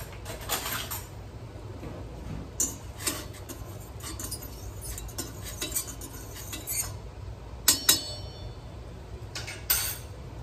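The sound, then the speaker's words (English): A utensil scrapes and clinks against a medium-sized metal pot in irregular bursts as salt is stirred into boiling water, with a steady low rumble of the boiling water underneath throughout. No one speaks. “And I'm gonna stir that around.”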